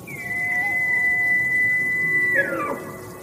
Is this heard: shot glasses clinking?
no